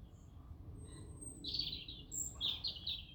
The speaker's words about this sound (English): Wow, bird song. Blackbird, maybe?